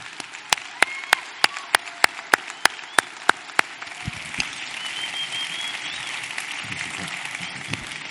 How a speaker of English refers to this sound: Can we stand and cheer for them? They put in so much work providing support for our campus. And so we just want to welcome them as they come out.